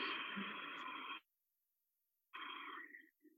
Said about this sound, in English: So you constrict the back of the throat the whole time, both on the inhale and the exhale. So I don't know if you can hear my inhale. And then my exhale.